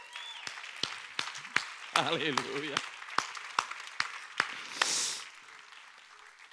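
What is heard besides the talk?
audience applauding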